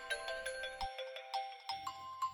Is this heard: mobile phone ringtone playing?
yes